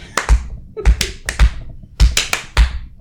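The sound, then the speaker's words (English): A few people give a slow clap for a guest star: sharp, dull claps land roughly every half second, some nearly doubled, with no voices alongside. “So I think we should all give him a slow clap.”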